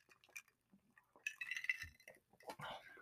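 Glasses clink together in a toast, a couple of bright chimes ringing briefly, surrounded by soft handling noise and a little liquid movement.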